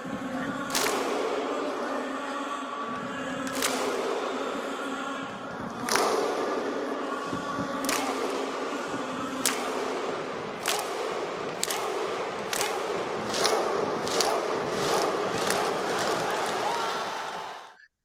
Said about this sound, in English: I think just the whole run Iceland had, which I suppose is slightly England-related because they knocked us out, but they started doing that Viking chant, didn't they, with the clap?